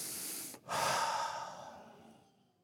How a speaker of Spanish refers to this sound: Porque hoy en la mañana pudo tomar un respiro profundo.